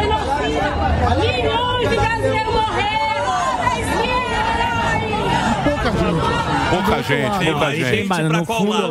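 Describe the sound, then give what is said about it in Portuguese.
A crowd of Bolsonaro supporters chattering and calling out together, a dense, steady hubbub of many overlapping voices with a few louder shouts and some laughter rising through it. “Mas tem a resposta também da torcida do Bolsonaro.”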